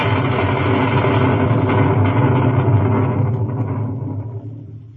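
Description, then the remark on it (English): A stormy sea roars in a dense, steady rumble of wind and surging water, loud and continuous with no voices, then gradually fades away over the final second. “Mr. Arrow, last night in the storm, apparently he was washed overboard.”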